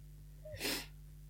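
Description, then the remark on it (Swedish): A single heavy, breathy exhale or gasp, brief, from someone out of breath, rising out of a quiet background with a steady low hum. No one speaks. “Nu blev jag anfådd av att andas igen.”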